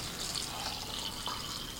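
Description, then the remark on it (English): A steady stream of water pours into a blender holding carrots, berries and protein powder, a continuous splashing hiss with a faint gurgle, heard alone without any talking. “And then next add some water here.”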